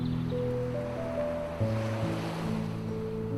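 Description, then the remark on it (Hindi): A steady, gentle wash of ocean surf rolls on a deserted beach at night, heard under sustained low, droning musical tones that hold throughout with no talking. “लहरों के शोर को भी जैसे नींद आ गई थी।”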